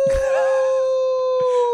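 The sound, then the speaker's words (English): A single long, eerie wolf-like howl holds a steady, slightly wavering pitch for nearly two seconds, loud and close, with brief low thuds at the start and near the end. “That's the death howl for this theory.”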